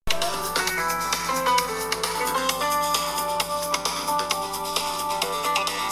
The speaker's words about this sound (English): I stared at the phone from afar, trying to silence it with my mind. But of course, that didn't work. It kept ringing.